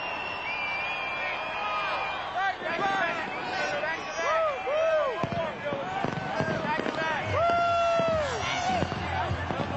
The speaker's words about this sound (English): Celebrating with the Grey Cup for the second year in a row as the fireworks go off.